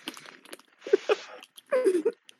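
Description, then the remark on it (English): Crisp, crackly bursts of chips being crunched, coming in short irregular clusters, with muffled voiced sounds mixed in between the bites. “A chip crunching ASMR?”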